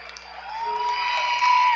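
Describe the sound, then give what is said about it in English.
A crowd cheers at a basketball game involving the Centurions, late in the third quarter, a broad, steady roar of voices with whoops rising slightly in volume over a couple of seconds, no single speaker standing out. “Crowd's getting a little bit more into it as we get closer to the end of this ball game.”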